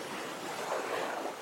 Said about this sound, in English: You're walking the shore, listening to the waves rolling in, going out, in and out, in and out